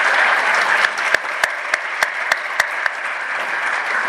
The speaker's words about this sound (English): And I saw that she was going to clap because I know she came to TSC, so feel free to clap for Texas Southmost College. Thank you.